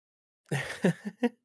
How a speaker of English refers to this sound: This is a sneeze. It was a cough.